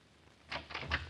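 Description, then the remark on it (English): A door being opened, heard as a quick run of three rattling clicks from the latch and hinge, fairly quiet, with no voices. “But don't open that door too much.”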